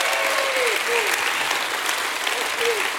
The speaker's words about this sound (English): Give him a hand clap and a shout of praise.